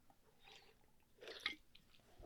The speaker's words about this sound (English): I have a nasal condition, so I took some meds and chugged a lot of water, but I am still kind of congested. About to take a big sip right now.